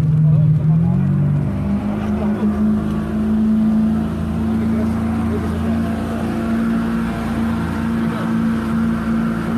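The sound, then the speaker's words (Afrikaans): An NSRI rescue boat at Stilbaai drones loudly and steadily in the dark, its engine pitch rising as it picks up speed, with rushing water and wind noise around it. “Right, ons versnel nou hier op die boot en hulle het breë glimlagte om in die donker en die koue water te spring.”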